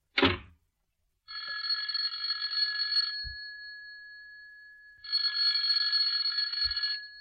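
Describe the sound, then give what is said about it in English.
An electric doorbell rings twice in long, steady buzzing bursts of about two seconds each, separated by a short pause, with a brief thump at the start and soft knocks after each ring. “You go outside and ring the bell again, and I'll show you where you're wrong.”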